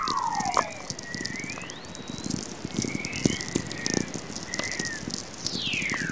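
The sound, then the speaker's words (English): Earth's natural radio emissions rendered as sound: steady crackling static with sharp clicks, several high whistles that slide smoothly downward in pitch, and faint thin steady tones overhead. No one speaks. “When I discovered Earth makes its own radio waves, I was amazed”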